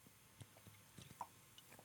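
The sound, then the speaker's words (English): Someone sipping and swallowing Founders French Toast Bastard, a vanilla cinnamon maple beer: a few soft, wet mouth clicks and gulps spread over a couple of seconds, quiet and with no talking. “And, oh, I didn't even take a sip. Here we go.”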